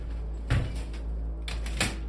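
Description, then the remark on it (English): A steady low mechanical hum runs throughout, broken by a heavy clunk and then two more sharp knocks close together, as an old elevator jolts into motion and its door shuts before it descends. “The elevator jarred into life and the door shut.”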